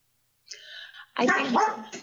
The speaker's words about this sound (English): My dog just barked.